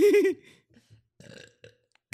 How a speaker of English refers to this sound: I'm going to belch. Oh, here we go.